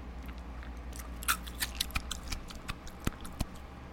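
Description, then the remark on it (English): Someone crunches an ice cube from a glass of water in their mouth: a run of sharp, irregular cracks and crisp snaps over a low steady hum, with no talking. “So if you hear me spitting it out, because I don't want to crunch it on the air because it just seems stupid.”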